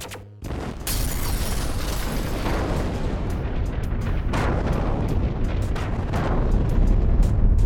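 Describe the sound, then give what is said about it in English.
A sharp shot cracks out, then a huge explosion erupts into a loud, sustained roaring rumble, with scattered crackling bursts that keep swelling until the end. No one speaks. “Everything seemed to explode.”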